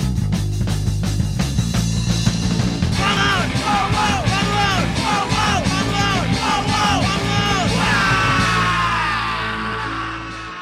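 A group of friends loudly yells and shouts backing vocals over a thick, driving band, rough chanted backing vocals rising and falling in ragged unison, sustained throughout before the music fades slightly at the end.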